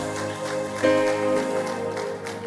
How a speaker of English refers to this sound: Give the Lord a good clap offering in the house.